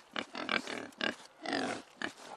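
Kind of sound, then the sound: animal, pigs grunting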